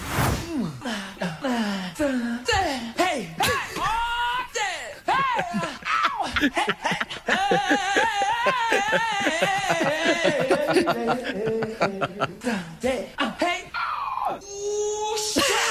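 A singer's voice pours out a rapid, nonstop string of wordless yelps, whoops, gasps and squeals, pitch swooping up and down, loud, with no actual words; an edit of every non-dictionary word sung in one song, from a musician.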